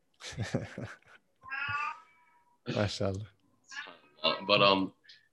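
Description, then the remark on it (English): A cat yowls loudly several times in a row, long drawn-out harmonic cries with short pauses between them, clearly audible. “Just in time to hear my my cat yell in the back.”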